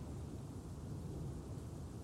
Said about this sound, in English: I never brought it up before because we never had a storm before, so I thought I could just get away with it and then you would never have to know.